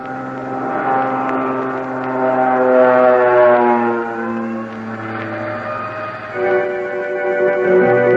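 A propeller airplane engine drones loudly and steadily for several seconds, its pitch wavering slightly as it rises and shifts, with no voices present.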